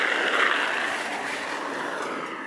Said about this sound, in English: Oh, here comes a car.